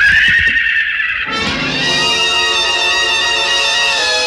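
A stallion rearing high lets out a loud, drawn-out neigh, shrill and quavering at first, then settling into a long, rough, trembling whinny that carries on strong with no talking.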